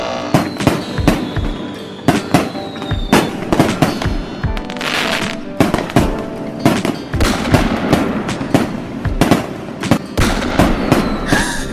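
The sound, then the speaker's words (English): A rapid, irregular barrage of sharp cracks and pops, like fireworks or gunshots, going off repeatedly for the whole stretch, loud with some crackling between bursts. “Was that fireworks or gunshots that just went off?”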